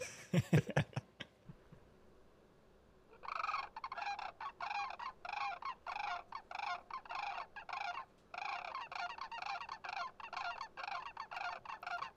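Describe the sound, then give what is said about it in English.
A few sharp clicks, then a recording of a tall bird, a little over six feet tall, giving a loud, harsh call repeated in rapid rattling bursts for several seconds, with one brief pause, clear with no talking. “Classic bird sound.”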